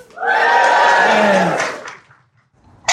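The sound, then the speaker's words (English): A crowd, cheering on cue as a send-off for someone leaving, lets out a loud, sustained cheer of many voices, swelling for about a second and a half before fading away, with a brief burst of noise right at the end. “Everybody here is going to give you a massive cheer when I say cheer.”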